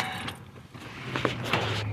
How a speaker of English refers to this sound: I'll even roll up my windows so the cars don't drown me out.